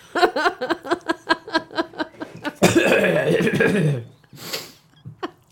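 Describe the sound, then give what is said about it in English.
Someone fakes a series of short, rhythmic coughs, then lets out a longer, raspy hacking burst before trailing off into a few faint breaths. “I've fake coughed so much I'm giving myself a cough.”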